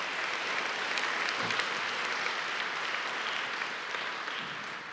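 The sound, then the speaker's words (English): A church audience applauds as a hand clap of praise to God during a morning service, many hands clapping at once into a dense, even wash of sound that holds at a constant level for the whole stretch, with no voices rising above it. “But can we give just a hand clap of praise to our Heavenly Father this morning?”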